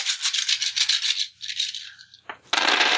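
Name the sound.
dice being rolled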